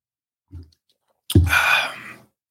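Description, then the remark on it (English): Someone drinks water: a soft low knock, then a brief pause and a loud wet gulp running into a breathy, satisfied exhale that fades after about a second. No one speaks. “And as we say that, you know, when I drink water, man, it puts me in the mind frame of putting love in your body.”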